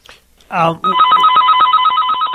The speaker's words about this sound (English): Your alarm went off, man. That's the snooze alarm just to make sure after your nap.